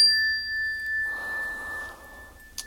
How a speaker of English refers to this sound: And just use the sound of the bell to bring your focus and attention to this moment, being fully present.